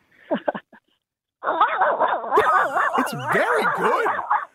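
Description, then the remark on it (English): A man imitates a chihuahua barking: a few short, sharp yaps, a pause, then a loud, continuous run of high-pitched, wavering yips and whines, with a brief spoken remark. “That is a chihuahua.”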